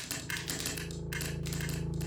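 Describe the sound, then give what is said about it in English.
Two typewriters rattling away in fast, dense bursts of mechanical clicks with brief pauses between runs as dispatches are typed on them, over a steady low hum. No voices. “The two machines rattling off line after line.”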